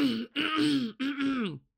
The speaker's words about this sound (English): Gotta clear my throat for it.